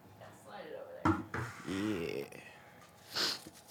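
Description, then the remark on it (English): A few short, dry rattling bursts of folded paper topic slips shaken inside a glass fishbowl come in quick uneven shakes, with a voice murmuring between them and a brighter rustle near the end. “You gotta like shake it. Listen. Like a maraca.”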